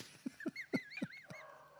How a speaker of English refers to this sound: Oh, you set the dog off now. Oh, yeah, I have, yeah.